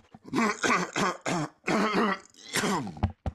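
A person clears their throat several times in a row, with rough, raspy bursts ending in a couple of short sharp coughs.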